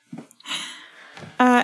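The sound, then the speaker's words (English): A person yawns: a long, breathy inhale followed by a short, loud voiced groan at a steady mid pitch that cuts off abruptly. “Yawn. Tired anyway, apparently.”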